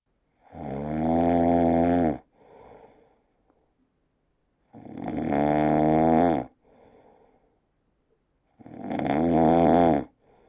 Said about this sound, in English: It's so quiet and still, except for a strange, sleepy growl that sounds like a chainsaw chopping through jello.